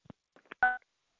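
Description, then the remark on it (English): A few soft clicks and taps, then one clear, fairly loud phone keypad tone lasting a fraction of a second as star 6 is dialed, with no talking. “But I'm going to do star. Ready, folks? Star 6.”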